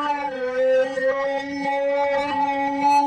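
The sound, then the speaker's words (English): A reversed sound effect, made by slowing down a sound, adding reverb and flange, then reversing it: a steady, howling tonal drone with rich overtones holds one pitch for about three seconds, swelling and wavering slightly in loudness, with no voices. “And then, when you reverse it, you get this.”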